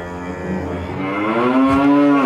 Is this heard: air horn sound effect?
no